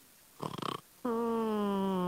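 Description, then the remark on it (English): Drunk people sleeping packed together on the floor of an inn's hall snore: a short, rough, rattling snore-like burst is followed by a long, steady, droning tone that holds loudly until the end; no one talks. “They were sleeping like sardines, farmers, traders, any of them snoring.”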